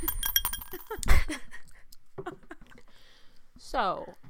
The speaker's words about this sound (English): We could do it makeshift. Put some coins in a little glass. Shake it up. But, yes. That sounds better.